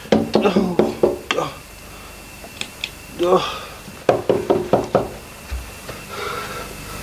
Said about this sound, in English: I had someone knocking at the door. Who it is? Shall I open it?